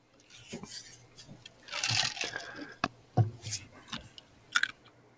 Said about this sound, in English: Yeah. I'm chewing ice. Yeah. Delicious.